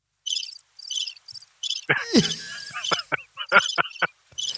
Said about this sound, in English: That's how many listens we're going to be getting, I tell you. Anyway, let's turn that off. Thank you. Thank you, Crickets.